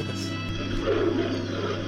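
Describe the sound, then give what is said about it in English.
A panther in film footage gives a deep, rumbling roar that swells slightly in the middle and holds for a couple of seconds, fairly loud, with no talking over it. “Let's see the footage of a lion or whatever the fuck it is. Oh, a panther.”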